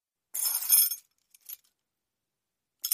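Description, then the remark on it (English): A project director's keys rattle in a bright, metallic jingle for about half a second, followed by a couple of brief, quieter clinks after pauses, with silence in between. “I'm a project director. I have keys for everything.”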